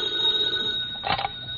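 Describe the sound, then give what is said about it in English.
A telephone bell rings in one short, rattling burst partway through, clear, over a faint steady hiss with no one talking: a morning phone call to Fibber McGee at 79 Whistle Vista. “Then the next morning came, and he got a phone call.”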